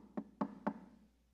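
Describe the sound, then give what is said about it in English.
Three firm knocks on a hotel room door in a steady, even rhythm, fairly loud, followed by quiet room tone with no one speaking. “So I go to the door and open their door, and there's this woman.”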